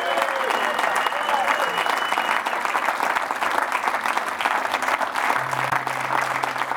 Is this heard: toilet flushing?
no